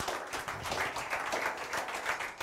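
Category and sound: crowd, audience clapping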